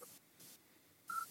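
A short electronic tone from a mobile phone that was left switched on chirps near the end, as a WhatsApp group message comes in, after a few soft bursts of hiss. It's quiet and brief, with no one speaking.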